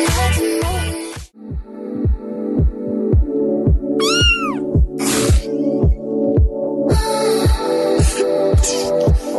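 A cat meows loudly, a run of drawn-out, rising and falling cries, over a steady ticking pulse in the background; no one speaks.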